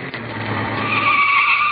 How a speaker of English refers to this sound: And here comes a car.